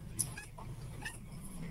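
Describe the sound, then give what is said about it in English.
A catbird gives a few short, nasal mewing calls that sound much like a cat, each a quick high whine over a steady low background rumble. “Wait, what was that, a catbird?”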